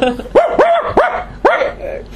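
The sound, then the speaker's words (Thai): A person mimics a dog barking with four quick, arched woof sounds in a steady rhythm, loud, a voiced imitation rather than a real dog. “มันก็เห่าห้องห้องห้องห้องแล้วมันก็เอาชวนเพื่อนมาใหญ่แล้วห้อง”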